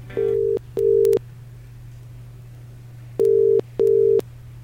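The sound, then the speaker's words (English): A phone line rings out with two double-burst ringing tones, steady and moderately loud, separated by a long pause, over a faint constant line hum, as Forever Manchester phones the winner of a prize draw. “And we're delighted to have the task of phoning the winner and breaking the good news right now.”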